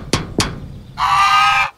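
Two sharp knocks, then a single loud, sustained nasal honk lasting under a second from Gustav, a solid-gold goose, with no talking.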